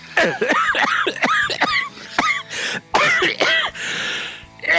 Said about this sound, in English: I'm done coughing.